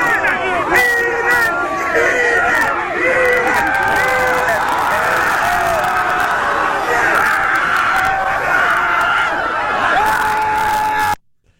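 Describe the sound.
A dense crowd of voices cheering on a man on his hands and knees and chanting together, loud and sustained for about eleven seconds with overlapping shouts, then cutting off abruptly.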